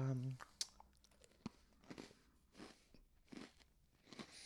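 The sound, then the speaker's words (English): Crunchy chewing of a crisp cookie, with sharp bites followed by several rhythmic bursts of crunching, and a brief bit of voice at the very start. “If the microphone is picking my chewing up, I'm so sorry. It totally is picking up your chewing”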